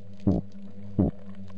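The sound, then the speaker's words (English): Two short, deep growling bursts from a fish, not a very big species found in the Gulf of Mexico, about three-quarters of a second apart, each a rough low rumble over a steady low underwater hum. No talking. “It does this growl.”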